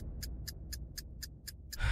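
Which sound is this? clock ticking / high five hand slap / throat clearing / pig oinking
clock ticking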